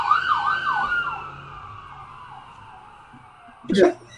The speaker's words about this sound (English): And in the distance, you hear sirens.